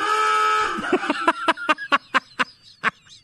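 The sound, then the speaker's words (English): An old-fashioned aooga car horn: a long, buzzy, harmonic blare that bends in pitch, followed by a quick series of about eight short, nasal honks in an uneven rhythm, with no talking. “And also, like, I guess that's that submarine sound, but it also reminds me of the old jalopy, like cars that would have those that hooga horn, which I've got to get.”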